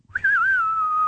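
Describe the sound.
A single sustained whistle, fairly loud, wavering in pitch at first and then holding a long steady tone, a person whistling an imitation of the wind. No talking.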